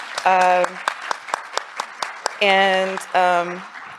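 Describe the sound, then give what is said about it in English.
Audience applause for the speaker's son: a steady patter of sharp handclaps runs throughout, joined in three bursts by loud, sustained cheering voices held on a steady pitch. “So if you guys give him a round of applause.”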